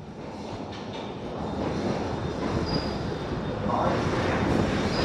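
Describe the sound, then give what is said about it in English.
Steady, dense rumble of a moving passenger train on a two-hour journey to Waterloo, heard from inside a carriage, with constant wheel and track noise that grows slightly louder and rougher toward the end. “Okay, so we're fresh off the train from Waterloo and we're currently at Piccadilly Circus.”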